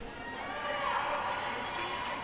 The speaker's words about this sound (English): The crowd sits above the pool, watching the players swim from one end to the other.